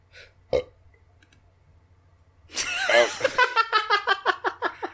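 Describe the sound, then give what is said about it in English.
A loud, drawn-out burp, starting as a rough gurgle and breaking into a rapid series of croaking pulses, preceded by a brief click. “I literally couldn't think of anything, and I just happened to burp at that time.”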